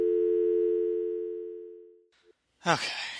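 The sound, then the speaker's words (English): A steady, humming telephone dial tone drones for about two seconds as a call is placed and then fades out, followed after a short pause by a brief burst of voice. “Well, I'll call somebody else.”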